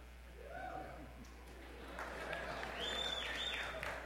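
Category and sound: crowd, audience applause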